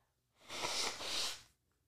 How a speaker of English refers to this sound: You guys, I like cried so hard earlier that now I'm all congested. Don't listen. I'm going to blow my nose.